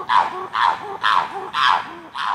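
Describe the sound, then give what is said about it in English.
Chimpanzee calls echo over the pine forests at Chimp Haven, the largest chimpanzee sanctuary in the world, in northern Louisiana: five loud, hooting bursts in a steady rhythm about half a second apart, each harsh and breathy with a rising tonal whoop underneath, and no talking. “This is Chimp Haven, the largest chimpanzee sanctuary in the world.”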